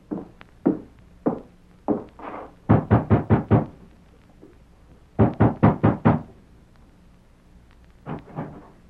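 Knocking on the wooden door of a home where a woman is rooming, solid: four slow, spaced raps, then two quick bursts of about five knocks each, and a final pair of lighter taps. No voices.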